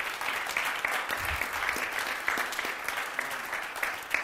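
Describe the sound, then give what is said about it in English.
Steady audience applause for the Pathfinders, a dense wash of many hands clapping at an even level throughout, with a few sharper individual claps standing out and no voices over it. “Y'all got to give yourself or give the Pathfinders a round of applause.”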